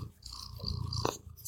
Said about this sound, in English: Purr. Really purr right there. Get that audio.